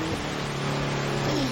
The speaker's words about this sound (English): Wait a minute. You can get the wipers on the car. Oh, is that what that is? Oh, yeah, you're right!